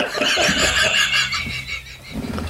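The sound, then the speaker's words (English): Someone imitates a horse neighing with a loud, breathy whinny that wavers and trembles for a couple of seconds, filling the space with no other talk. “I could ride you like Seabiscuit right now.”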